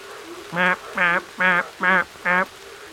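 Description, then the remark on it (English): A voice imitates a green tree frog call with five short, nasal, honking croaks in a steady, evenly spaced rhythm, loud against faint background hiss. “Can you make the sound of a green tree frog? Give it a go with me.”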